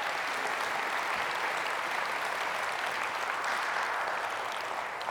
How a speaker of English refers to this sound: Now give the Lord a hand clap. Come on.